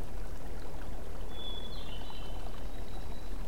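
Steady rushing of the Payette River in Idaho, water flowing without pause, a dense continuous wash of sound; a thin, faint high whistle drifts in over it partway through.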